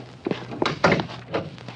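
A door is opened with a handful of dull, close-by thunks and clunks, spaced irregularly over a couple of seconds, with a faint low hum underneath and no voices.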